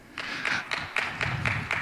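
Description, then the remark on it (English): An audience claps together in a steady, quick rhythm, about seven bright, even bursts over two seconds, each clap sharp and of moderate loudness, with no talking over it. “We'll see if you're clapping then.”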